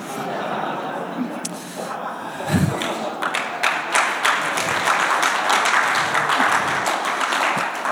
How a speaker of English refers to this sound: I'm not too sure about the applause, but thank you anyway. It definitely makes me very awkward.